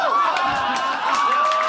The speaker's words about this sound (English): Why are you cheering that?